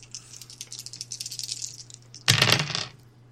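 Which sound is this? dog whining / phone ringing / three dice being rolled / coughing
three dice being rolled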